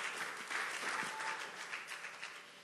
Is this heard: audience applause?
yes